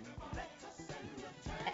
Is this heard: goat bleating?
yes